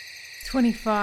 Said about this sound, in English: Throughout the night, you only hear the crackling fire and the insects chirping in the woods until you hear a twig snap and rustling of leaves or undergrowth.